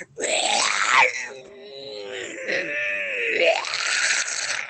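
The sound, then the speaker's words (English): A vulture's loud, harsh screech drawn out for several seconds, its raspy cry wavering and bending in pitch like an anguished wail, with no talking over it. “The only thing pulling you out and realizing you hit, you hear just this agonizing screech coming from this vulture.”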